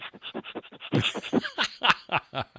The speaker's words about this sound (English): A little snuffling there.